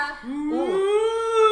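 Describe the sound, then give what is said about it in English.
A person mimics a whale call with a single drawn-out, rising moan that swoops up and holds, fairly loud, lasting about a second and a half. “That's the whale out back in the lagoon.”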